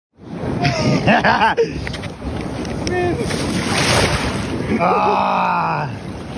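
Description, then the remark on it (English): Pacific Ocean surf washes steadily at a windy beach in Newport, a broad rushing roar that fills the whole scene while several people, four skateboarders who rode their boards into the ocean, shout and talk excitedly over it. “Last Friday, four skateboarders rode their boards into the Pacific Ocean in Newport after riding across the country.”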